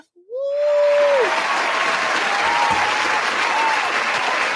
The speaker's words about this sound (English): We live, y'all. Hand claps.